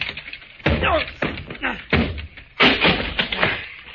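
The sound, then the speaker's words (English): A locked door is being broken down: four heavy, booming thuds strike at uneven intervals, loud, with a ringing rattle after each blow and faint voices in between. “Stand back, Fern. Yeah. I'll have to break it down.”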